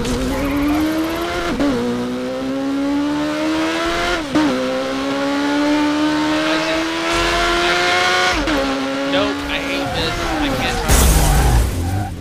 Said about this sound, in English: Why did I crash? I hate this. I cannot drive my car.